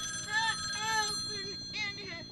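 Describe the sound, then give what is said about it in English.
A telephone rings with a warbling electronic trill in repeated bursts, steady, over a low rumbling background. “That phone is going to be ringing a lot this episode.”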